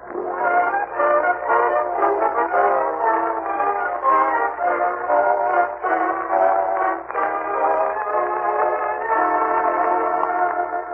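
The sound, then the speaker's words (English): A train arriving at the Summerfield Railroad Station in The Great Gildersleeve, with a steady, loud rumble and layered whistle-like tones sounding continuously for several seconds, no voices. “And now let's visit our friend, the great Gildersleeve, as he and Marjorie and Leroy wait in the Summerfield Railroad Station for the arrival of that well-known authoress, lecturer, and second cousin, Octavia Gildersleeve.”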